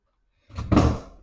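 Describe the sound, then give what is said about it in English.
After a moment of quiet, a door swings and bangs shut with a single heavy thud, its rumble fading away briefly afterward. No one speaks. “And there's a lot of door slamming in here today, isn't there?”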